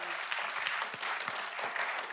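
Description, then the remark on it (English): A crowd breaks into steady, enthusiastic applause for a group of children, a dense wash of overlapping claps holding at an even, fairly loud level throughout with no voices standing out. “If let me just tell you, give them a rousing round of applause.”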